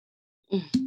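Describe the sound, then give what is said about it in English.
A cork is pulled from a wine bottle with the teeth: a short squeaky, rubbing stretch followed by a sharp pop that rings briefly before fading. “My mom hates when I pull the cork out with my teeth.”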